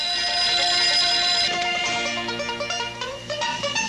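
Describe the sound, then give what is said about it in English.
A telephone sitting on a piano rings with a bright, shrill, sustained tone, loud, then gives way to a run of steady musical notes. No one speaks. “So then one of the singers picks up a phone that's sitting on the piano.”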